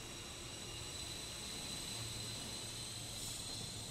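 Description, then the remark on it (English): A steady, even rumble of a train travelling from London up to Stoke-on-Trent, like the hum heard from inside a carriage, with a faint high whine running through it and no talking. “The train journey up gives Rob a chance to reread Jeff's book, The London Underground Serial Killer.”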